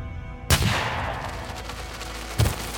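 A single loud gunshot, fired at the back of a man's head in woods among oak trees, cracks out, its report rolling and fading slowly through the woods, followed a couple of seconds later by another dull, echoing boom.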